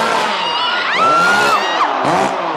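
A loud crowd at a wrestling chain match roars as women shriek for wrestler Terry Funk in long, high-pitched wails that rise and fall above the din, with several shrill voices overlapping near the middle.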